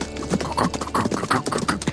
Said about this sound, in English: The Crinkle gallops up on his mule, his donkey.